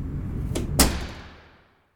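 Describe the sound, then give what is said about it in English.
The front door of a brand new house swings shut with a short knock followed by a solid bang, its resonant thud fading away over the next second. “I walked up to the door saying, number 9.”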